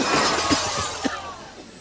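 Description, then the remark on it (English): In a sketch from the Netflix comedy show I Think You Should Leave with Tim Robinson, a hot dog-shaped car crashes through a window: glass shatters in a burst of bright, jagged crashes, then tinkling shards rattle and settle over a low steady rumble, with no voices. “Someone drove a hot dog-shaped car through the window.”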